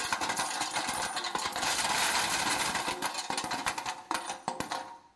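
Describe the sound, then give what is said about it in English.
Coins brought as offerings pour into one of thirteen brass jars standing against a wall opposite a colonnade, in a dense, steady metallic rush of jingling and clattering, then thin out into scattered individual clinks before stopping. No voices are heard. “And when people would come with their offerings, they would come with their little bag. And they would go up to one of those 13 and they would pour in.”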